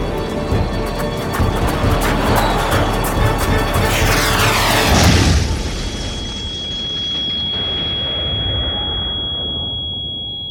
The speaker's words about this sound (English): The jet! Come on! Let's go!